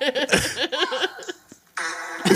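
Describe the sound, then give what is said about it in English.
A woman singing karaoke farts loudly into the microphone, a wavering, sputtering buzz that rises and falls, breaks off briefly, then resumes in a rough, flatter burst. “The most, she's like clearly just like fucking methed out, cracked out of her mind, farted into the microphone.”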